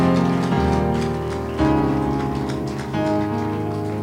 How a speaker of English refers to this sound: Are you clapping your hands? Are you clapping your legs?